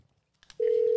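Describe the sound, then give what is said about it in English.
A phone call ringing out: after a couple of faint clicks, a loud, steady electronic ring tone starts abruptly and holds to the end, clear with no voices. “I'm going to call Fat Cat”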